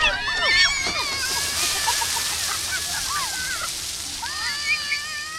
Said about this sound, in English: And it was hot. With highs near 100 degrees, one of the best attractions was CPN's new splash pad, and the kids loved it.